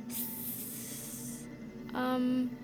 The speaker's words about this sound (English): Hiss. Hiss. Denny? Denny, do you hear that? I'm sure it's nothing.